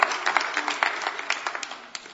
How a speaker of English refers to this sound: Yeah, give them a round of applause.